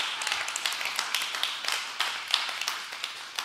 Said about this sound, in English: And give her a round of applause, please.